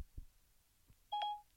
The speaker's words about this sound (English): I like how my phone responds to your Siri.